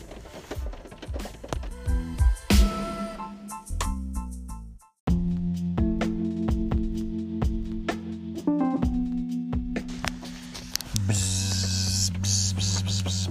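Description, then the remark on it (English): A person imitates buzzing bees with a steady, low droning hum that wavers slightly in pitch, continuing for several seconds after a brief busy, percussive stretch and a short pause. “Why are you making bee noise? Because this next story involves bees.”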